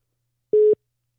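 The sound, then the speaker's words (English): A telephone busy tone after a call hangs up: one short, steady, mid-pitched beep lasting about a fifth of a second, heard alone with silence around it. “Dude, why'd he hang up on us?”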